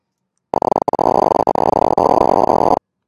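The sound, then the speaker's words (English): Rapid popping and crackling from a single neuron firing in a monkey's decision-making brain area, dense and irregular over a steady hiss, loud and continuous for about two seconds with a few brief gaps, with no voices. “Each time you hear a little popping sound, that's the actual firing of a single neuron in a primate decision-making area.”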